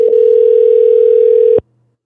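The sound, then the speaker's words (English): A steady telephone dial tone from a phone call piped into the audio hums loudly and evenly for about a second and a half, then cuts off abruptly into silence. No voices are present. “You can even pipe phone calls and see what I mean?”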